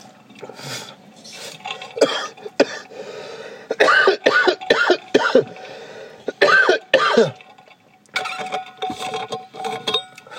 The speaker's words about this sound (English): Eight coughs.